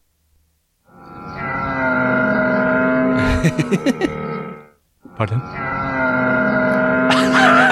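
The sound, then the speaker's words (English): A camel lets out a long, loud, throaty groaning bellow with gurgling, burp-like pulses, pauses briefly, then resumes moaning. A short spoken word is heard. “Do camel, see if it's a real What animal you want to hear next? Camel.”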